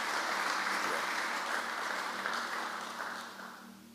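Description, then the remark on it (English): An audience claps for the Lord as the gathering closes, a dense, steady wash of applause with no distinct individual beats, loud throughout and tapering off slightly toward the end. “Give the Lord a clap of 10 minutes as we close.”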